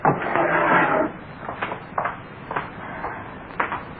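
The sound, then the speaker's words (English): A wooden drawer scrapes open with a long rough slide, followed by several short clunks and rattles as a hammer is lifted out, with no one speaking. “get me that hammer out of the drawer.”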